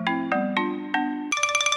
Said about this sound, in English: Well, folks, that music means we've reached the end of another episode of Tales with a Whale.